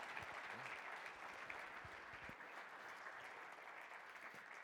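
A steady round of applause from many hands for a woman who has just shared her story, a dense even crackle of clapping that holds at a fairly constant level for several seconds with no voices over it.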